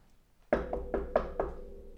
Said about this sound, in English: Come in. What? Is this a joke? You want to go knock, knock?